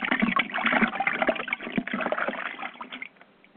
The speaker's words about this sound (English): And first, what we will do is cleanse the area, drawing the holy water, blessed and consecrated from the well of wisdom.